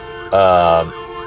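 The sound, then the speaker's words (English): An ambulance siren blares a loud, brassy tone for about half a second at a steady pitch, rising abruptly out of a fainter droning background and cutting off just as quickly, with no talking. “Got an ambulance.”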